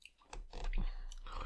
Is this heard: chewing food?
yes